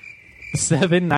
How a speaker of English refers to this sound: It's a cricket.